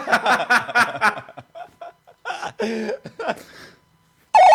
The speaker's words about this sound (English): Hello, Moto. Question number 3 for 300 figurative pounds. This ringtone was from which mobile telephone? Was it A, the Nokia 8520, B, the Motorola Razr V3, C, the BT Cellnet NEC, or D, the BlackBerry Z10?